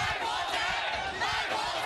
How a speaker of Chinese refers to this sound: 在游行队伍高喊保卫香港口号的同时，另一组手拿五星旗的人马大喊一个中国卖国贼等口号，让场面一度紧张。